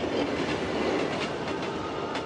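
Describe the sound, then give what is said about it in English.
A train on the way to Belfast rolls steadily along the rails, its wheels giving a rhythmic clickety-clack over a dense, constant rumble, fairly loud with no voices. “Imagine Paddy's train thoughts on the way to Belfast with his new bride, Ellen Treston.”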